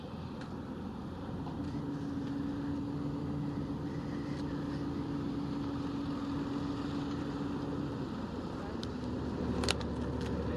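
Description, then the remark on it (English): The engine of a green Hulmatic fishing boat, about 37 feet long and doing about 7 knots, heading out at sea for cray and lobster, runs in a steady, loud, low drone with a faint humming tone, churning on without pause, with a brief sharper clatter near the end. “It's green. Does about 7 knots. So shouldn't take us too long.”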